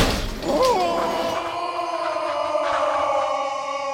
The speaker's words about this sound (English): falls back against the flimsy wall of the hut and smashes through.